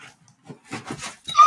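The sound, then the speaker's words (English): A short burst of scuffling and scraping as chair wheels accidentally roll over a dog, ending in the dog's sharp, high yelp. “I think I just accidentally rolled over my dog.”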